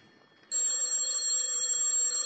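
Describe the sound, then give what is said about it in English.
A telephone in Lieutenant Clover's office rings loudly and steadily, a bright metallic bell tone that starts abruptly and sustains without pause after a brief faint moment of background noise. “Telephone's ringing”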